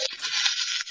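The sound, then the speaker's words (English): Dice rattle and clatter in a steady, bright scraping rush for about a second, dipping briefly near the end, with no talking, rolled to hit during a combat turn in a tabletop game. “I gotta control this dice.”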